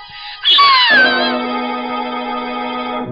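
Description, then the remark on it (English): A dog named Butch, on its haunches by a fireplace with nose in the air, howls in one long, loud, mournful wail that rises sharply, slides down in pitch, then holds a steady tone to the end, with no one speaking. “Butch was on his haunches by the fireplace, nose in the air and howling as if for the dead.”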